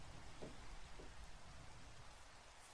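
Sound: rain falling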